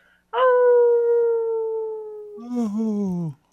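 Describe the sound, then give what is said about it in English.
A person howls like a wolf: one long, loud, steady howl that slowly sinks in pitch, followed by a shorter, lower, wavering howl that breaks off. No speech. “Oh, maybe howl by myself today.”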